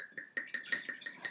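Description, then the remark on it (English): White wine, a Pinot Blanc or Pinot Gris, pours into a glass in a quick run of rhythmic glugs, each bubbling pulse riding over a steady, bright ringing tone. No one speaks. “Okay, I'm going to pour.”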